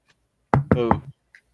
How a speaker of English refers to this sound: And I go over to Phil's door and I knock on it.